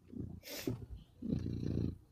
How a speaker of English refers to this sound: Can you hear the cat purring? Yeah. Okay, that's funny. I hope some audio people before this moment just assumed that that was me purring,